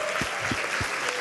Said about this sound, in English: So let's give a round of applause for that.